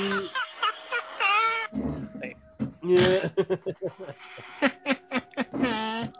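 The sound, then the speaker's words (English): Someone does a voice imitation of a cat, giving a few drawn-out, gliding meows between bursts of short, choppy vocal sounds. “Don't I sound like that anyway? No. Now! Meow. Meow, meow.”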